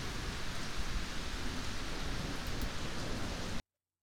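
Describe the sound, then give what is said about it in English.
Heavy rain pours down in a dense, steady roar for a few seconds, fairly loud, with no voices, then cuts off abruptly into silence. “Since I was man, such sheets of fire, such bursts of horror thunder, such groans of roaring wind and rain, I never remember to have heard.”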